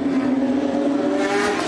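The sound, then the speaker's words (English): A loud, continuous roar of race car engines as the cars come through at the start of a race, a steady buzzing drone with layered tones, with no voices over it. “The cars have come through, and we have actually started the race.”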